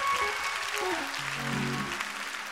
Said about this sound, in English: Come on, clap your hands and praise God for that.